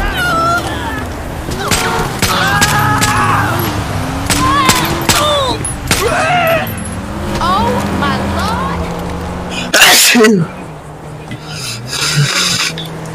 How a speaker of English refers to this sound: Oh shoot. Gunshots.